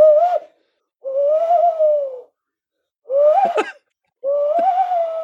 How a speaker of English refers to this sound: Yeah, that's two tawny owls there. And that's the sound that most people associate with the owl, as you know. But but people often assume that's a barn owl, and a barn owl does not make that noise.